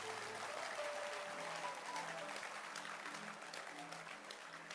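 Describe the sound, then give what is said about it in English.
An audience at a Christian church service claps hands steadily, a dense, continuous wash of applause that stays fairly loud throughout, with faint tonal hints of voices or music beneath. “Clap your hands.”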